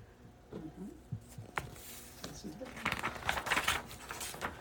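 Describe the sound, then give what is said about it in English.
Harsh, raspy squawks from a big black crow overhead ring out several times in an irregular burst, loud, with low murmuring tones underneath and no one speaking. “Just as Chipmunk reaches for a nut, she hears a loud squawk above her.”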